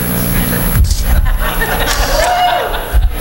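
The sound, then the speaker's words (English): An audience cheers and murmurs in a dense, steady wash of crowd noise, with scattered chuckles and chatter mixed in, holding at a fairly loud level for about three seconds. “I don't know which one you're cheering about either.”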